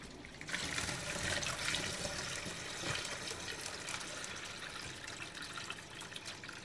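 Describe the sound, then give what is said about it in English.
Water pours steadily from a running tap into a plastic bag, filling it about half full, a continuous rushing splash that starts after a brief pause and carries on without letup, with no talking. “We fill this with water and see how it goes.”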